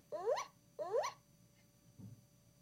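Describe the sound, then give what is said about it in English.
An interactive toy block, one of a set of 20, plays two quick, high yapping dog barks in a row, fairly loud, followed by a soft low thump and quiet. “There's ones with dogs. So we've got all of these different things. There are 20 different interactive blocks.”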